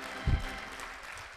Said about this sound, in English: Come on and clap your hands if you understand what Pastor's saying.